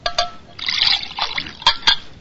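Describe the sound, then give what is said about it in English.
Water pours into a glass in a short burst of trickling and splashing, with a few sharp clinks and drips near the end, moderately loud. “Please, the water.”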